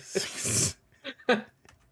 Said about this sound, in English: Oh, dude, I wish everyone could see the dog. That's hilarious.